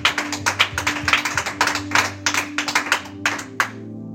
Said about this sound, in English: Oh, sorry, I clap my hands and I appreciate God.